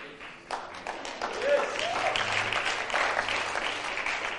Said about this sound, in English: So some of you are clapping and some of you are sitting like this and some of you don't know what to do. So let's clap, everybody. Let's clap. Come on, let's clap for Jesus.